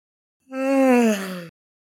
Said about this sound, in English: Ferrora Valsine comes out of the shadows, rubbing at an eye and yawning